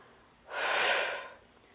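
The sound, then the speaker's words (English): A single long, deep breath, taken to help move energy along during a healing exercise, a smooth airy rush that swells for about a second and then fades, with no voices around it. “So FYI, sometimes I do some snapping or clapping to help move the energy along with some deep breathing.”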